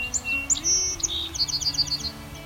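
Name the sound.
song sparrow song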